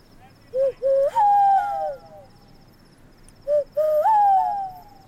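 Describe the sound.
A voice does a 'sky rat call', imitating a bird call in two bursts, each starting with short hoots and rising into a longer, wavering, cooing note, over a quiet background.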